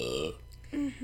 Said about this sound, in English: That is not a sound effect. That is …'s beautiful burp.